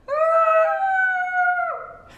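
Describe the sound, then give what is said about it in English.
A single long, wolf-like howl from a human voice at 8 p.m., held steady and loud for nearly two seconds before sliding down in pitch at the end, with no talking. “Do you guys remember 8 p.m.? Yes! 8 p.m., the howl!”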